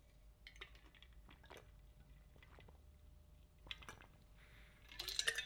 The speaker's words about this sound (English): And before I dive into it, let me get a sip of this water, because I've been freaking ranting.